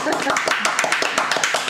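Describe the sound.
A short burst of applause: quick, irregular hand claps from a small group, steady and fairly loud throughout, with voices faintly mixed in underneath.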